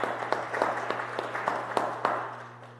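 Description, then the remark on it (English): A crowd breaks into steady applause, many hands clapping in a dense patter with a few sharper claps standing out, fading slightly toward the end over a low constant hum, as the group applauds itself for raising $1,405 to send kids to Camp Oneida. “So yeah, give yourselves a round of applause.”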